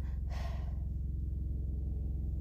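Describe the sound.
During a prison tour, a voice imitates a breathing noise: one short, sharp, clear breathy inhale near the start, then a steady low hum continues to the end.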